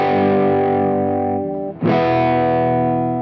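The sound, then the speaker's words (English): A loud electric tone on a music signal, heavily distorted by harmonic distortion that adds overtones, buzzes with thick overtones. It sustains for about a second and a half, drops out briefly, then is struck again and rings on. No talking. “One of the most common is called harmonic distortion, which adds overtones to the original sound.”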